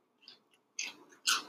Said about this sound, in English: All right, the garlic bread is finished. Let me taste it. I know you hear that crunch. It's absolutely fantastic, let me tell you.